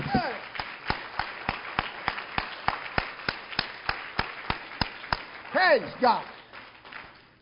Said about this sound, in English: Give him a hand clap.